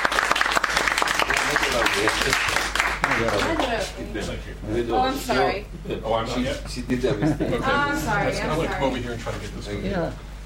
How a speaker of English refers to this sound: So without further ado, ladies and gentlemen, please give a warm welcome with your applause